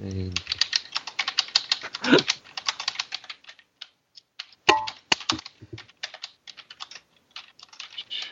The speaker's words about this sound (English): Somebody has a loud keyboard. Sorry, that'd be me. It's okay. He's just punching the keys, for God's sake.